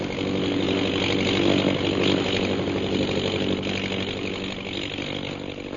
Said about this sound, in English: Look, a plane. What? You're right. And it's a British government plane, too.